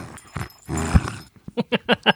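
A dog, Skeeter, tugs at a tiny squirrel squeak toy: a stretch of scuffling, noisy tugging, then a quick run of about five short, sharp squeaks in an even rhythm. No one speaks.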